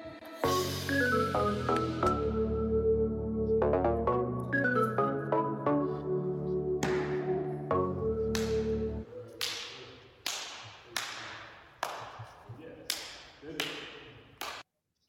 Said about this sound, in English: So let's slap hands.